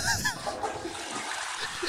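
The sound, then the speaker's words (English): A toilet flushes: a brief, steady rush of swirling water lasting about two seconds, with a faint squeak at the very start. “Flush the toilet.”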